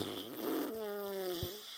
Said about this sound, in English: I took us home with a fart sound.